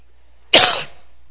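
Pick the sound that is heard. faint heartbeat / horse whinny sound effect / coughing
coughing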